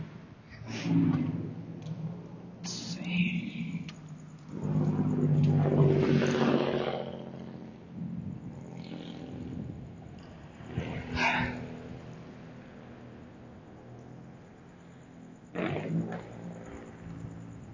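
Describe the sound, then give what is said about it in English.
A loud, raspy car engine with no muffler roars past, its rumbling growl swelling to a peak and then fading, followed by quieter passing traffic. “Automobiles. Why take the muffler off?”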